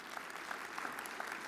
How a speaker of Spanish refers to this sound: Amén, de un aplauso al Señor.